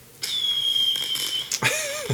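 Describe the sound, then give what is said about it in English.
A firework whistles upward in a long, thin, high-pitched tone over a noisy crackle, followed by a burst and a second, lower whistling streak trailing off. “I couldn't quite hear the fireworks. Can you hear them now?”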